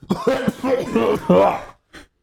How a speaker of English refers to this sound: This nigga coughed directly into the mic. No, I didn't. That hoe need to be sanitized.